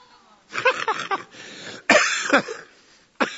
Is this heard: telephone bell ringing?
no